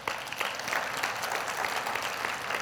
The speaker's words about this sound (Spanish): Ok, vamos a darle un fuerte aplauso al Señor.